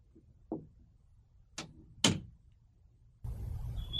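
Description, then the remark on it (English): A door swings shut with a few sharp clunks and a final latch click, followed by a steady rush of background noise and a faint high whistle. “He just said his name when I closed the door.”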